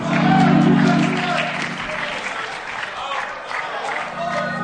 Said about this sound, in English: You know what encourages me? When you start clapping your hands.